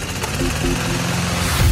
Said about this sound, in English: Mowing the lawn. We need the right equipment.